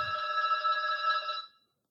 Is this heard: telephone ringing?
yes